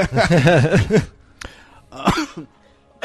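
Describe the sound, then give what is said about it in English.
A strained, voiced throaty fit gives way to a few short, harsh coughs separated by brief pauses, moderately loud, with no talking over them. “I'm coughing. I'm coughing to death.”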